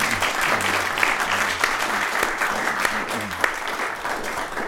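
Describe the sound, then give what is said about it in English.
An audience claps steadily, giving a warm round of applause for a shy man, a dense, even wash of hand claps that holds at the same level throughout, with faint low voice-like murmurs underneath. “could you all just give him a very warm round of applause, please?”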